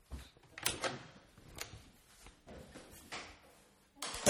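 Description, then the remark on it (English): Clunks and rattles of a front door being handled and pulled open, with scraping and a louder burst of noise at the end; no one speaks. “who's at my door? Hang on, I'll get this.”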